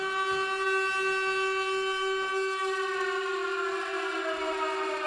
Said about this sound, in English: Getting the Shining noise up. I'm just getting the... not the Shining noise. Silent Hill. Silent Hill sirens.